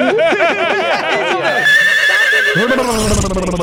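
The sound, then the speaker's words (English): A loud horse whinny: a rapid quavering trill of rising and falling pitch that settles into a sustained high tone, then drops into a lower snorting finish over a few seconds. “So what, was he making like a horse motorbolt sound?”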